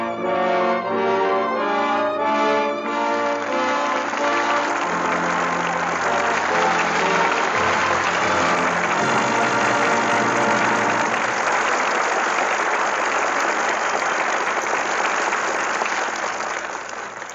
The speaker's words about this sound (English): With that well-deserved applause, our thanks to Jimmy Stewart and Joan Blondell, who come to the footlights for their curtain call. And Jimmy, I hardly need say how happy we are to welcome you back to the Lux Radio Theater.